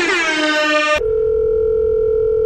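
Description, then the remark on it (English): A loud, harmonically rich tone for about a second, then a steady, pure telephone dial tone hums on unbroken, with no voices. “And now you're about to listen to some emotional phone calls.”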